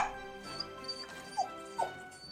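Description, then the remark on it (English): The next-door neighbor's cocker spaniel, Gretchen, gives three short, high-pitched yelping barks, spaced unevenly across a couple of seconds, over a faint steady tonal hum. “And worst of all, she was mean to the next-door neighbor's cocker spaniel, Gretchen, who would often come into the backyard for treats.”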